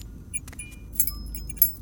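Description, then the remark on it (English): Keys jingle and clink in a few quick, bright bursts as they are grabbed from a table, over a low steady rumble with no talking. “I walked over to the table and grabbed the keys.”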